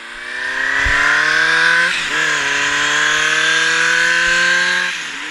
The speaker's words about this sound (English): At one point, we traveled by motorbike. It was hectic. I nearly fell off at one point,